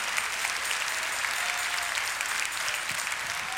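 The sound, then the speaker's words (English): A large group claps continuously in praise of Jesus Christ during a sermon, a dense, steady wash of applause without pause for several seconds, with no clear voices standing out above it. “Clap your hands and give praise for him.”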